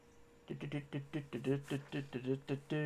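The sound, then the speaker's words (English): A single voice hums a short, bouncy tune, with about ten quick rhythmic notes rising and falling in pitch over roughly two and a half seconds. “Why I keep humming that tune, I don't know.”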